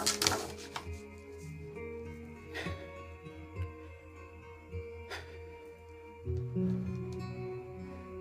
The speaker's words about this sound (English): And maybe the knock startles him. Like, You, as the knock comes, you are surprised by how much time has passed. Like that moment, and then you hear the knock, and you kind of snap to